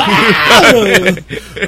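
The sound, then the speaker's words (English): A man's voice imitates the anguished scream of a man being shot, a loud, wavering cry that rises and falls in pitch for about a second before trailing off into breathy noise. “Actually the noise Rob Zombie used in the shot. That's yeah. When he got shot, he screamed.”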